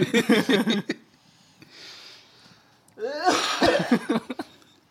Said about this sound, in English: Edit out cough.